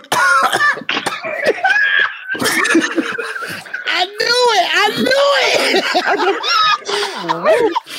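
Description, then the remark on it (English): Harsh coughing bursts from a person during a spoken intro break out amid strained, wavering vocal noises, loud and nearly continuous for several seconds with only brief gaps. “I started coughing in the middle of the intro, and I was like, it's not coughing.”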